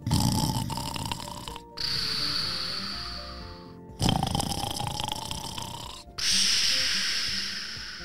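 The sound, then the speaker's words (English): A large dog snores loudly, two full breaths, each a rough rattling inhale followed by a long whistling exhale, with no talking around it. “It always kept William up at night when Banks would snore because he was a very loud snorer”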